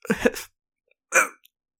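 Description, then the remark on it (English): A voiced, gasping sneeze build-up of quick breaths while leaving a voicemail, then a pause and one short, stifled breathy puff that never becomes a full sneeze, a false alarm. Fairly soft, with no talking. “You start leaving a voicemail and then you have to sneeze, so you stop.”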